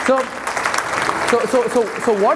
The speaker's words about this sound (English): What, you want to clap? Then clap. Good.